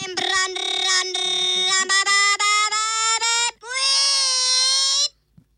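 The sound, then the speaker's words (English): A frog-sound phone ringtone plays loudly: a buzzy, strongly harmonic tone chopped into quick pulses with a slowly rising pitch, then one longer, higher sustained croak before it cuts off. “It's a frog.”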